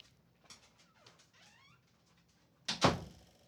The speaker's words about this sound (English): Some of the mess ups on the previous recordings of this episode was because of my dog, who is currently moving on the futon as we speak. I'm not editing this out because this is real life, y'all.